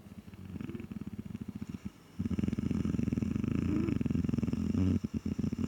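A deep, rumbling purr-like growl from Krampus, a large creature, low and rhythmic, pulsing steadily with a brief pause before resuming louder and fuller, prominent with no talking.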